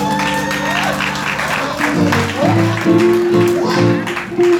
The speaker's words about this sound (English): This covenant worship center, you all came in and you all showed out. Do you hear me? Y'all better clap for that.